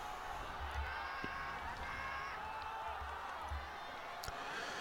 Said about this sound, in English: Crowd don't know who to chant for. They want a winner, but they don't want this to end.